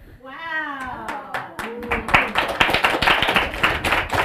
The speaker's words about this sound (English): Now, thank you. Hold your applause.